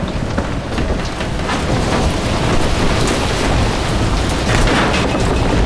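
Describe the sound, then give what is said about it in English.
A heavy thunderstorm roars steadily, dense rain pouring down with deep low rumbles of thunder rolling underneath, loud throughout with no voices. “We Doucettes, we not scared of no damn storm.”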